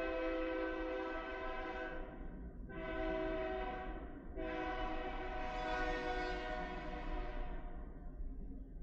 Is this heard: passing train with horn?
yes